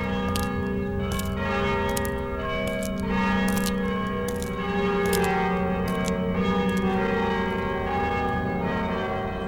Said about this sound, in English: When any event happened, Angelus, during the daytime, the bells rang. The bells rang to call people to church. Celebrations, when it was New Year's, or any major celebration, the end of the war, the bells rang.